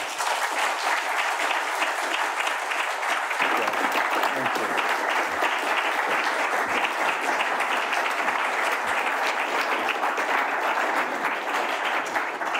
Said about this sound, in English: So a warm round of applause for him, please.